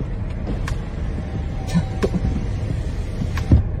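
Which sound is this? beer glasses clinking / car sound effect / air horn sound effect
car sound effect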